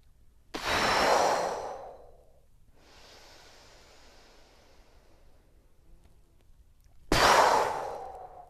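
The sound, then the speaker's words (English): During a breathing exercise, two forceful breaths are blown out through the mouth, each a loud whooshing exhale, separated by a long, quieter inhale through the nose; no one speaks. “Now you're going to inhale through your nose. And exhale like a cannon breath out through the mouth.”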